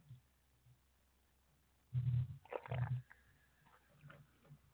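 Someone takes a drink of water: two quick, fairly loud gulping swallows a moment apart, low and wet-sounding, with quiet stretches and faint rustles before and after. No one speaks.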